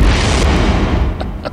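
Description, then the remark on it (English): A loud swoosh sound effect, a broad rushing whoosh with a heavy low rumble that slowly fades, ending in a couple of faint short ticks. “Let's hear the swoosh and the interview.”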